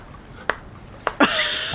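A few soft, weak hand claps, three sharp little slaps spaced unevenly, the last two close together and followed by a brief bright hiss, with no talking.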